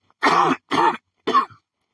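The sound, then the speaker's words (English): Three harsh coughs in quick succession from a man with a dry throat, each a short noisy burst with a throaty rasp, loud, the last one trailing into a brief throat clear. No talking. “That was just respectful, just coughing like that.”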